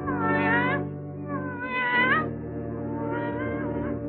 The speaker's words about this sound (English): Yes, it's a cat. We called him Jerry. Just a tomcat, color black, disposition friendly, usually.